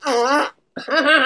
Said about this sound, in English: Did he fart? Oh my God! Why do you insistently fart all the time?